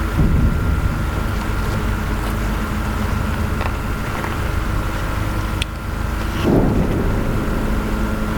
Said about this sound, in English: More explosions.